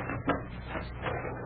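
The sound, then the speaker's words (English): A heavy barn door scrapes and rumbles open, a continuous grinding with a brief louder creak near the start, no voices over it. “All right, open that door and we'll see what this barn has to offer.”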